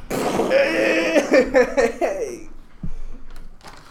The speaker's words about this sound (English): For all those of you wondering what that, like, elbow fart noise was, that was dabbing.